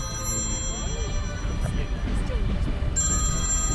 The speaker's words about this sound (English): as Helen gets off the train, the phone rings and it's her beloved daughter Janie